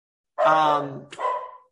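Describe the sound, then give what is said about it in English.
Dogs nicknamed the touch dogs bark in a room: two drawn-out, whining barks in quick succession, the first longer and louder, the second trailing off. “The dogs don't like to talk about Jim Harbaugh.”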